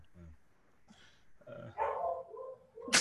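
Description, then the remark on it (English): A dog barks loudly in a couple of rough, drawn-out bursts, ending in a sharp final yelp, with some muffled voices and movement in the background. “Hey, dog looking for some meat.”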